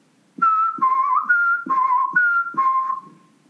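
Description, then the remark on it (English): A footman whistles a short tune, six clear notes alternating between two pitches in a steady rhythm, with soft breathy onsets and no other sounds. “Anything you like, said the footman, and began whistling.”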